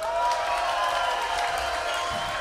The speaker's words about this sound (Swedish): Hur många mår bra? Applåderar ni som är bra?